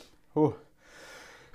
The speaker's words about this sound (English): Well, I'm going to sneeze, and then I'm going to stop you.